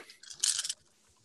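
A handful of dice, including a D10, rolled for damage, rattles together in a brief, bright clatter that swells for about half a second and then cuts off abruptly, with no talking over it.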